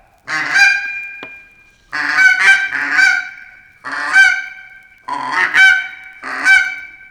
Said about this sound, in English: Your eyes will strain to pick them up. Suddenly, there they are, a great V of Canada geese, necks outstretched, talking noisily as they ride south on relentless wings. Yes, these are Canada geese, large and handsome